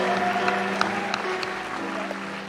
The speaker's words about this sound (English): I reckon that, come on, needs a bigger clap right now because that's the heart of God.